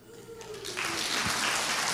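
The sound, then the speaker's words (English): After a brief quiet moment, an audience bursts into clapping: dense, steady applause from many hands that swells quickly and keeps going loudly to the end. “Clap if you love Jesus.”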